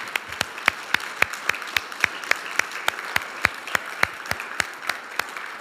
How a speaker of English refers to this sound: Let's all stand. Would you please stand and give applause for somebody who will take a stand?